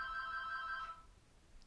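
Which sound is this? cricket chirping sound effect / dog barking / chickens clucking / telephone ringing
telephone ringing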